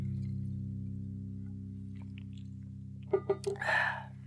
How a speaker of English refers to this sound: Just taking a sip of my drink there.